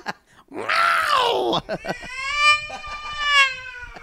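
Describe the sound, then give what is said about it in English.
A person imitates a screaming cat with a loud, strained yowl that swoops up and down, then breaks into a long, sustained high-pitched wail, unaccompanied. “First chandelier scream as a feline.”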